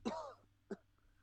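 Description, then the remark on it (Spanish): A person clears their throat with a rough, raspy burst, followed a moment later by a short, sharp cough, both fairly loud against a quiet background. “No, si para toser a la gente, tú.”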